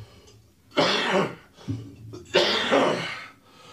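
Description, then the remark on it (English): Two loud, harsh coughs from a person who is still sick, separated by a short pause with a quick throat-clearing rasp between them. “And while … coughs”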